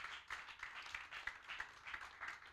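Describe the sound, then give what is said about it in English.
A crowd claps together as a clap of praise to God, in a dense, steady burst of overlapping hand claps, with sharper individual claps popping out now and then, lasting a few seconds with no voices. “Can you give God a clap of praise?”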